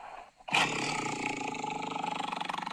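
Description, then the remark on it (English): A tiger lets out a single loud roar that bursts in suddenly and holds for a couple of seconds with a rough, pulsing growl as it trails on. “And she was a tiger.”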